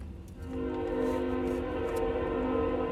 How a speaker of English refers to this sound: Another train coming by, that's fun. I'll note that for next time.